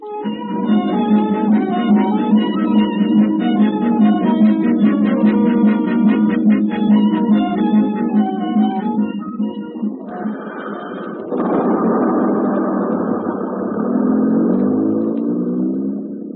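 A bus's large engine idles with a steady low drone and whining harmonics as it arrives at a station, then the pitch shifts and a loud hiss of air brakes or doors follows as the bus settles, with no voices.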